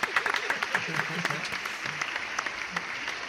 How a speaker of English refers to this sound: And this is Frank Ntilikina Appreciation Day. Yes. That's right. Clap it up, clap it up, clap it up.